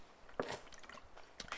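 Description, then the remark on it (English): A person takes a quick sip of water, with soft wet slurping and squishy mouth sounds over about a second and a half, and no talking. “I need to have a drink of water.”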